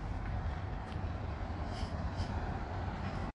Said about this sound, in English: I think it will be a little bit more noisy than usual because I'm in the bus right now.